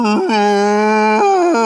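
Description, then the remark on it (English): A voice imitates a whale moan: a loud, sustained, low-pitched hum that holds steady, broken by a few quick pitch wobbles. No words are spoken. “And then he does this, he has the whale moans.”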